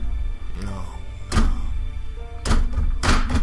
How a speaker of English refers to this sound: And across the way, the tunnel is broken open about 12 feet up as a cyclops busts through the gate.